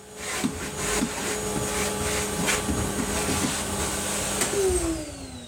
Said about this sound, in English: it is true that I was hoovering at the time for at least some of the recording